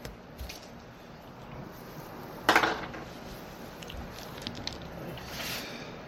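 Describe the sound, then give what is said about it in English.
A d20 die, rolled for initiative, clatters onto a tabletop in one sharp burst of clicks with a brief rattling tail, followed by a few faint taps against a low background hum. “So go ahead and roll me a d20 plus your initiative modifier.”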